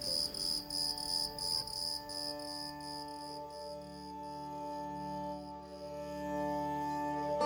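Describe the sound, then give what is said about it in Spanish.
A cricket chirps outside in the dark in rapid pulsing bursts that blur into a steady, shrill trill, carrying on without pause over a soft, sustained low drone. “Afuera chirriaba un grillo en la oscuridad.”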